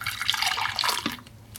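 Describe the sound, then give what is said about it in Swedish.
Juice pours steadily from a thermos into a cup for just over a second, a bright splashing gurgle that tapers off at the end, with no talking. “Smörgåsen inslagen i papper och termosen med saft i. Häller jag upp lite saft här.”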